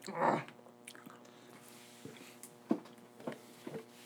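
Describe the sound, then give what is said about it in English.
Quiet chewing of chicken nuggets during a timed nugget-eating challenge: a brief muffled bump at the start, then soft, irregular wet mouth clicks and smacks, with no one talking. “There's a lot of nuggets left in them containers.”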